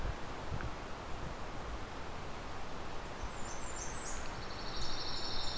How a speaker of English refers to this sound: Well, that's closer. There's our ovenbird.